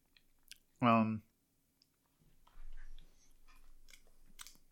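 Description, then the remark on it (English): Chewing of a crunchy little noodle snack, with steady crackly bites and small clicks lasting a couple of seconds, preceded by a short, loud voiced hum. “Anyways, I'm going to have this little noodle thing. Here we go.”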